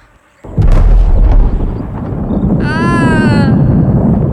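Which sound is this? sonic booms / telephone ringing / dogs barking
sonic booms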